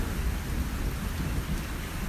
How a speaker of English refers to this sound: So we'll dive in here as y'all sit and listen to the thunder and the drizzle on the tin roof. Hopefully y'all are enjoying that and it's not driving you to distraction.